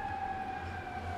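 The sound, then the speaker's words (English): An ambulance siren sounds as a steady, sustained tone over a low traffic-like rumble, holding at an even, moderate level without any clear rise or fall in pitch during the short stretch. “ambulance. It's kind of distracting, but I like it.”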